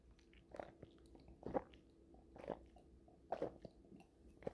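Quiet mouth sounds of someone sipping a drink, with four or five wet gulping bursts spaced roughly a second apart and no talking.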